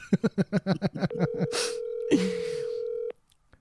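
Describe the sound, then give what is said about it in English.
A rapid run of about nine short telephone dialing beeps, followed by one steady, mid-pitched tone held for roughly two seconds with a couple of brief noisy bursts over it. “we're taking a call.”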